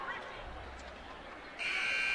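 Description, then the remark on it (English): A loud arena buzzer blares for the final half-second or so, sounded for the PA announcer, a steady harsh tone cutting abruptly over a noisy crowd of student sections and the murmur of voices. “as we get the buzzer to sound for the PA announcer to do his thing.”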